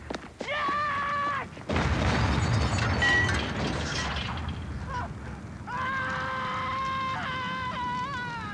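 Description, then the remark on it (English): A man's car explodes in a loud, roaring blast lasting a second or two, framed by his long, anguished wailing screams before and after as he falls to the ground; loud. “His car explodes, and he just screams, falling to the ground.”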